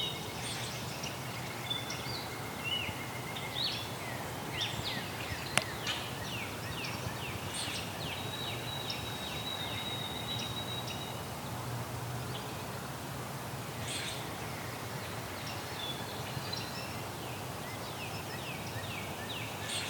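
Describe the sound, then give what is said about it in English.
Common grackle calls sound close by in a dense, busy chorus of birds, with the squeaky notes of a rusty blackbird fainter in the background. Continuous chatter throughout, no voices. “There's a rusty blackbird in the background, too. And a common crackle. Crackle's closer, though.”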